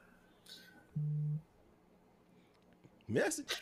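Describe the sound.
A single short, steady electronic beep like a phone alert tone sounds once, loud, against a quiet background, followed shortly by people starting to talk.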